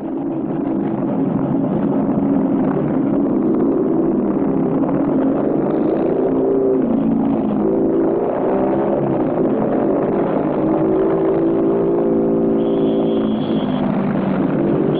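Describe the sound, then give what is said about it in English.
Ten motorcycles riding in a chevron formation around the curve of a track at sunrise, followed by a big black car with small American flags, rumble past, their engines blending into a loud, steady drone whose pitch rises and shifts as they go by. No one speaks. “Around the curve of the track ride 10 cyclists in a chevron formation, followed by a big black car.”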